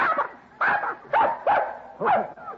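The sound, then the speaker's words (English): Six newborn puppies yelp and whimper in a quick series of about six high, squeaky cries, fairly loud, with short pauses between them and no talking. “Puppies, darling. Yes, sir. Six of them.”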